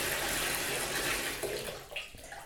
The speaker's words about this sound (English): You turn on the water. Okay, that's beginning to fill up. Kind of what you expect from a bathtub. Yeah, it's filling up pretty nicely.